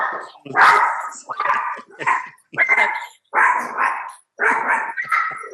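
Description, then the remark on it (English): A dog barks loudly and repeatedly after the doorbell rings, about seven sharp barks in quick, uneven succession with brief pauses between them, each bark rough and mid-pitched. “Someone had the audacity to ring the doorbell.”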